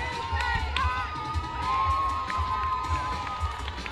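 A large crowd cheers and shouts "big bad Bath" in a loud chant, many voices overlapping in a dense, continuous roar with rhythmic bursts, celebrating the Bath United team winning the game and taking first place.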